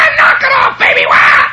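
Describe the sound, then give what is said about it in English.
A person loudly imitates crows cawing: two long, harsh, raspy caws in quick succession, strained, like shrill yelling. “And these were crows, you know, they'd yell at her and holler, and they'd fly up a little bit and sit down again and squat.”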